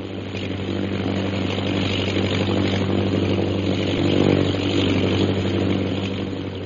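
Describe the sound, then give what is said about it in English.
A propeller airplane engine drones steadily overhead as the plane circles a jungle camp, a continuous low hum that swells slightly louder midway, then eases off again. No voices are heard. “The plane's circling the camp. It'll be over us again in a minute.”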